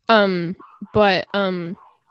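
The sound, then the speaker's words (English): A dog lets out three loud, drawn-out barks, each a sustained, yelping call with short pauses between them, sounding excited and insistent because someone has just come home. “My brother just got home and my dog is really excited, so.”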